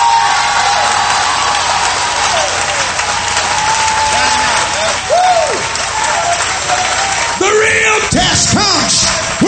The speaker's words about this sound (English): To shout with a voice of triumph, but you're not told how long to shout.